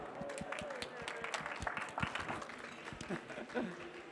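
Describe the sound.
An audience at AWS re:Invent applauds to welcome a speaker presenting on the new ECS CLI v2, in a steady, dense patter of many hands clapping that runs for about four seconds at an even loudness, with a few voices mixed in beneath it.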